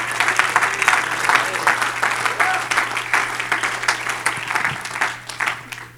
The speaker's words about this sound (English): You ought to clap your hands as loud as you can right now.